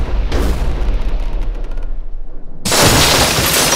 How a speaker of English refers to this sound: What the devil was that? Cannon fire? They hit us. That's impossible. Obviously not. Both shots hit the hull, sir.